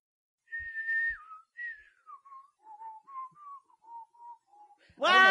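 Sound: person whistling a tune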